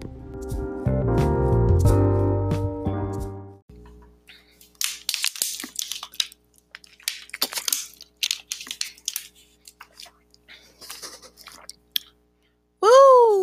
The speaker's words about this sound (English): See, I normally edit that out, but I think I'm going to keep it in that time. I mean, this time. That's me drinking a bottle of water before I start talking. And you would think it was to, like, moisten my mouth and palate,